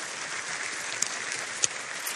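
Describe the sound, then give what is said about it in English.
An audience applauds together, a dense, steady wash of many hands clapping, with a couple of sharper individual claps popping out of the crowd noise. “We are better together. You can applaud that.”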